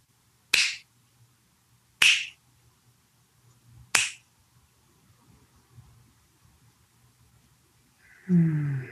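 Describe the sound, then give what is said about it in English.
Three crisp finger snaps, evenly spaced about a second and a half apart, ring out clear against near silence at the end of a meditation, followed by a brief low murmur. “When I snap my fingers 3 times, we open our eyes slowly.”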